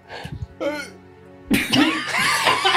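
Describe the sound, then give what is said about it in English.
A stifled sneeze, held back on purpose: a few short, choked breathy catches, then a sudden harsh burst of air that trails off into strained, voiced sounds. “I sneezed. I'm sorry.”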